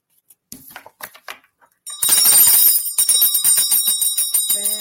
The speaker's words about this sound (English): I got to ding my bell again.